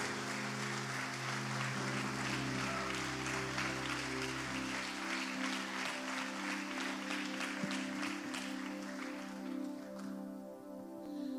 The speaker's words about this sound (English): Why don't you stand to your feet? Let's give the Lord clap offering, a praise offering. Let's just worship God for the last 25 years, but more than that, for the things that God is going to do.